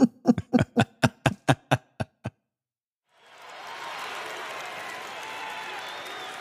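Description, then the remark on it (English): About a dozen sharp, loud claps in a slowing rhythm stop abruptly. After a brief silence, a dense crowd roar of cheering and applause swells up and holds steady. “Listen to that crowd.”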